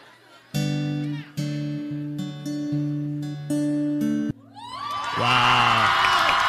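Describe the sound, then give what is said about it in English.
A few sustained keyboard chords ring out, then a large live crowd at an outdoor concert by the ocean on a lovely day erupts into loud cheering, with high-pitched screams and whoops rising over a roar of applause that swells through the final seconds. “If you're in love in this crowd, this song is not for you.”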